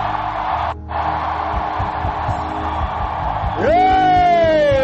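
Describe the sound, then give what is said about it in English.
An audience shouts and cheers in a sustained, loud roar, with a single voice rising in a long whoop over the crowd near the end. “As you are shouting, the walls are coming down.”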